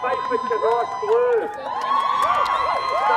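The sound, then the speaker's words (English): A massive crowd at the Highland Show cheers and shouts continuously at the final of the Young Farmers Tug of War competition, many overlapping voices rising and falling in loud, excited yells with no pause for the whole stretch. “Just putting this in perspective, so this is not only the Highland Show with a massive crowd, but this is your finals of the Young Farmers Tug of War competition.”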